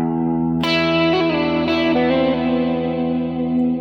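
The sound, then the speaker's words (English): An electric guitar plays a short melodic lick of a few sustained notes, each bloom trailing into echoing delay repeats and a wash of reverb, fairly loud with no talking. “So if you think about it, now if I add that back in, I'll add a little delay and reverb.”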